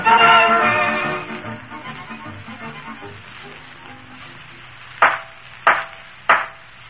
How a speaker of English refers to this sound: Judge's gavel, McGee. It's the only knock that ain't a boot. Silence in the court.